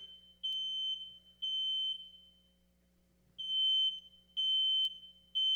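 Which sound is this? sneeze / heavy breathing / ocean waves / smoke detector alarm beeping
smoke detector alarm beeping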